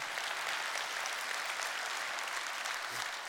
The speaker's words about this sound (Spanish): Dale un aplauso a Cristo, gloria a Dios.